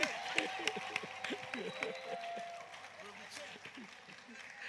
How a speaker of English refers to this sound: And the wives who are clapping, we too will be God's wives.